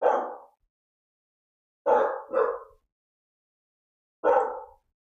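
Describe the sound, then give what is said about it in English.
Dogs barking loudly, four sharp barks in all: a single bark, a pause, a quick double bark, then one more after another gap, with silence between. “I can't get through an episode anymore without my dogs barking.”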